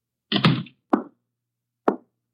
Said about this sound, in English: Shut the door, Chuck.